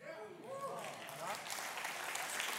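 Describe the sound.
A church audience breaks into steady, dense clapping that builds and holds, with a few voices calling out and cheering over the start before the applause takes over.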